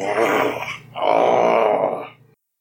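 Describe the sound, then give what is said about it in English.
A human voice growls in two loud, strained bursts, the second longer and rougher, with no talking around them, like someone imitating a straining growl. “And you hear …'s growling.”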